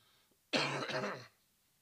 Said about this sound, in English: I think this is the spot. Like I'm in the microphone. So when I need to cough, let's see.